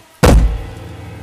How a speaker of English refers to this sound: He turned his hand into a fist. Isabelle was quick to cover her eyes as Henry's knocks turned into overbearing bangs.